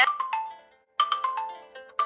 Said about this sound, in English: So it's telling me there are a total of 36 ringtones here I could choose from. I'm going to put my finger near the top. Phone ringtone, checked. Not checked, natural. So if I want to hear what natural sounds like, I tap here.